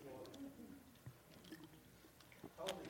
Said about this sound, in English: Man, better have a drink. They told me to quit saying dilly-dilly because people listen to this tape and they're not sure about what we're drinking. It's water.